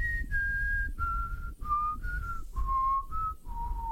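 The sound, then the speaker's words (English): A person whistles a short tune of about eight sustained notes that step gradually downward in pitch, clear, over a low background rumble with no talking. “you can like say it. You can mm-hmm. say that you whistled it, and no one will ever know the difference.”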